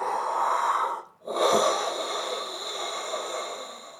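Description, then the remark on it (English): A voice imitates enormous, rasping snoring, heard as a quiet, distant echo coming from the south: a long breathy draw, a brief pause, then another sustained rough snore, with no talking. “It sounds like an enormous snoring sound”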